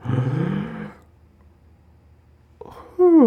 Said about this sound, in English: Wait, here they come. Just doing my breathing exercises.